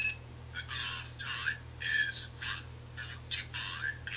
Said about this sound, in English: And there you go. There's the alarm. Did you turn that off, or did you? I did. Yeah. I pressed the time button, the 2 o'clock button.